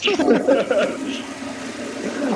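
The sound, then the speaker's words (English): A voice mimics a toilet flush: a short gurgling, voiced burst that trails into a sustained whooshing hiss, fairly loud, with no real water sound. “insert flush noise.”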